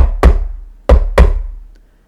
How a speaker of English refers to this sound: Barney flew to the goblin door knocker and knocked on the door.